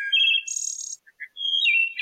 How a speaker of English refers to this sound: And the wood thrush has sort of a flute-like sound. They're heard more in deeper woods, and they're often heard late in the evening around twilight.